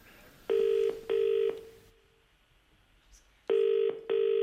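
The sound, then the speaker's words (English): A telephone line ringing out on a call to a pet store: two pairs of short, buzzy, steady-pitched tones separated by a pause, with no one speaking. “And he had some fun the day that he was ringing a pet store.”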